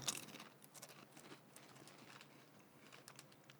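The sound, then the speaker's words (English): Crisp crunching of oregano-flavored ridged Ruffles potato chips from Greece being chewed, a steady series of sharp crackly bites and snaps with no talking. “It's like chewing an herb.”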